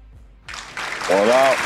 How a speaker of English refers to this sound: Yeah, she get the claps.